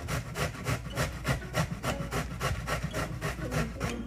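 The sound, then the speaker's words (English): Zucchini and carrot being grated: a steady run of about fourteen quick, rasping scrapes in an even back-and-forth rhythm, moderately loud and bright, with no voices. “Okay, so we're just grating up the zucchini and the carrot and putting it in the same spot.”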